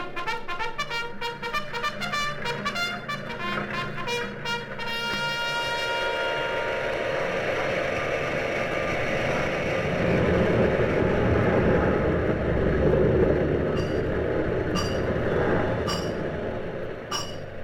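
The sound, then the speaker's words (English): Rapid metallic clanking and pounding over a steady mechanical hum, giving way to a loud, dense industrial roar with a few sharp knocks near the end: the sounds of turbines, giant drop forges, blast furnaces and assembly lines at work. “Hear the hum of a multitude of turbines, the pound of a myriad of giant drop forges, the roar of blast furnaces, the clanking uproar of assembly lines, the birth sounds of great armies gathering, tumult and shouting across a nation”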